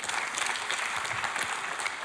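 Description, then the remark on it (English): A church audience applauds steadily during a sermon, dense overlapping claps forming a continuous bright wash of sound at an even, moderate loudness with no voices breaking through. “Come on, that needs an applause today.”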